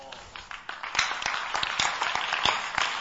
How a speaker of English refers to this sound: Father, those who are clapping, dash them some money.